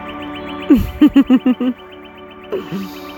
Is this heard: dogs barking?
no